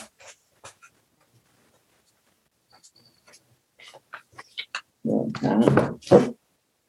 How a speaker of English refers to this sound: So this is island. Let me draw a little.